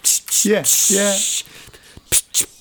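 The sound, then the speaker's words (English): A voice imitates the shrill, distorted hi-hats of a track with a run of hissy "tss" bursts, two of them carrying pitched vocal tones, followed by short sharp ticks, loud and harsh in the treble. “I'm hoping I'm getting some distortion on my mic just to kind of illustrate it.”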